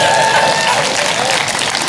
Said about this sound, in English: I got the jet. Give Jesus a hand clap for that.